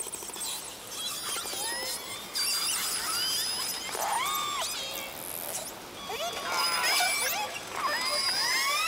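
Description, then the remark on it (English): Hydrophone recording by Ken Balcom, at night in 1995 south of Stewart Island, of some 98 killer whales from J, K and L pods blowing and spouting around his boat: dense overlapping high whistles and rising, falling squeals over a steady hiss, busiest toward the middle and end. “Pitch darkness, he recorded this with a hydrophone as some 98 whales blew and spouted around his boat.”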